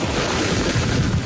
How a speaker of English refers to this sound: As he was giving his report, that was the sprinklers jamming him in the face with water. But he's a trooper, and he sped through, and he finished his whole report.